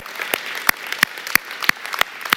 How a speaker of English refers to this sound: I'll pause for applause. Amen. Amen.